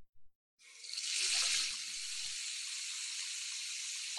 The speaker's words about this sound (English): It sounds the same as the toilet. It's a faucet running.